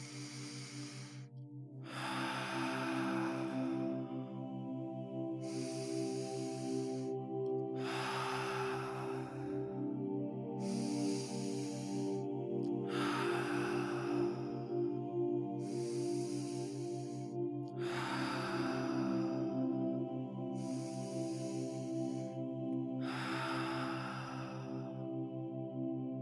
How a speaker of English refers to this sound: We will start with 5 ha breaths. Breathing in.